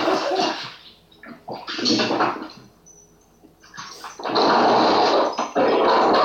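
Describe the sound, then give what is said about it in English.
A dog growls and snarls in harsh, rough, loud bursts, easing briefly in the middle before a long, sustained stretch of intense snarling. “hey, this dog is just growling.”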